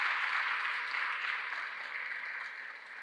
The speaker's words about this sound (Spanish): Dale un aplauso fuerte al Señor en este día.